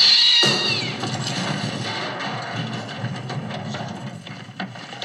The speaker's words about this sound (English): And we get the classic cat jumps out of the closet jump scare.